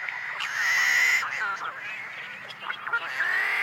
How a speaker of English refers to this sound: Are the combined voices of tricolored blackbirds in a California marsh.